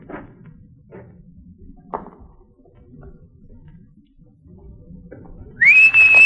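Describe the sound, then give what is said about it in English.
After several seconds of quiet low rumbling and a few soft knocks, a loud, shrill human whistle bursts in near the end, a sustained piercing tone that slides slightly upward and holds. “When I'm close enough, you whistle loud enough to make the fella turn over this way.”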